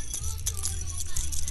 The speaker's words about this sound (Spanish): La gente que no ve puede escuchar esa campanilla, puede creer que es una oveja, un chivo, alguna cosa. Es mi espíritu navideño.